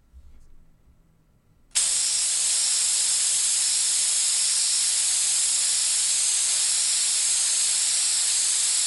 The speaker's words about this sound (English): Yeah, it's just an aerosol spraying, like deodorant, spray can. Could be hairspray too.